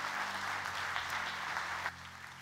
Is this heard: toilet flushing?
no